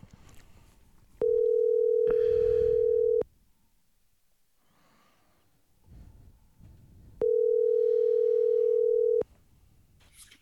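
Two long, steady ringback tones sound over a phone line as a call is placed, each lasting about two seconds with a pause between, loud and clear against faint background noise.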